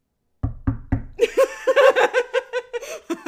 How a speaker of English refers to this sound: We just, like, paused and looked at each other, and we're like, we should probably knock on wood. That's what that was.